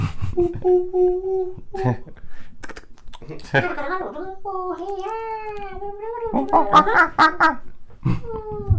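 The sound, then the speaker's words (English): A human voice imitates monkey chatter with a steady hooting tone, then a run of rising, wavering squeals and excited yips, punctuated by sharp clicks, fairly loud throughout. “Here at the bonus hours, we speak monkey.”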